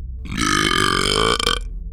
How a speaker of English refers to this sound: He just slurped the last of his chocolate malt and let out a loud, obnoxious belch.